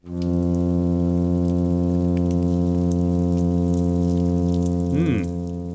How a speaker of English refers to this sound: Okay, here's a hum sound produced by the plain fin midshipman.